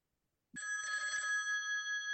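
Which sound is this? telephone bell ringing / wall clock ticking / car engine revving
telephone bell ringing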